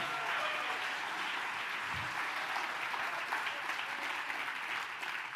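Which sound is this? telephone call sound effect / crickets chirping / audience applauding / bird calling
audience applauding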